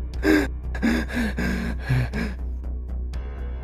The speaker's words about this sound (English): The door is partially ajar, and as you approach it, you can hear the person on the other side there breathing, growing louder.